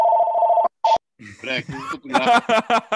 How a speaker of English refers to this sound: He's got the phone ringing like he's a busy guy.